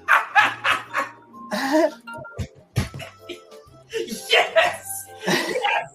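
A dog wearing sunglasses barks repeatedly in a video, in quick, uneven bursts, loud, with short pauses between clusters of barks throughout.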